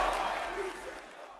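A large wrestling crowd at the AEW Full Gear pay-per-view Lights Out match roars and cheers for Moxley in a dense, sustained wash of noise that holds steady and then eases off slightly over a brief moment.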